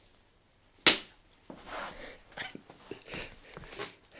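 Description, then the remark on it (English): A single loud, sharp slap to the face cracks out once, then gives way to soft rustling, shuffling and breathy movement sounds. “So that was obviously just a slap in the face.”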